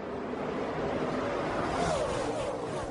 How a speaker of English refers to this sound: Clutch shift third gear.